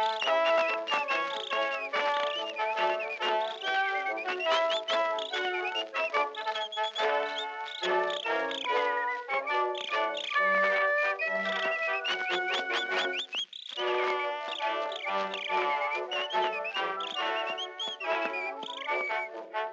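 A lively whistled tune runs steadily for about twenty seconds, bright, high-pitched notes in a quick, bouncy rhythm with a brief pause partway through. No voices are heard.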